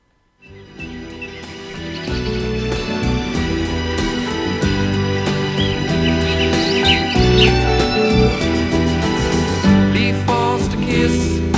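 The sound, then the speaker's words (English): An instrumental passage of a 1973 New Zealand folk protest song against the damming of Lake Manapouri for a hydropower station starts after a brief silence and plays steadily and fairly loud, with full, warm low tones and faint bird-like chirps woven through the middle. “It was produced in 1973, and it's a protest song against the damming of Lake Manapouri for a hydropower station.”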